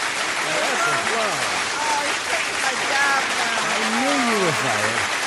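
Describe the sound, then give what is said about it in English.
A canned applause sound effect that came with an app: a steady, dense wash of clapping that holds at an even level throughout, with cheering and whooping voices rising and falling over it. “That's applause.”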